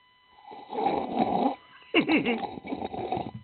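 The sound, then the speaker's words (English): Someone imitates slurping a drink with their mouth: two long, wet, noisy sucking bursts separated by a brief pause, the second one rougher and more gurgling. “People that slurp their drinks literally should be decapitated, or they should be forced to take fluids intravenously, because it's one of those.”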